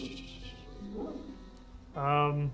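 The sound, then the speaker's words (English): Someone vocally mimics an angry puppy barking, a short yappy growl followed by a louder, drawn-out bark-like yelp near the end. “It's very angry and it's barking, but nobody wants to hurt.”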